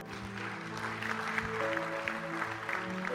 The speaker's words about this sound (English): Clap your hands today.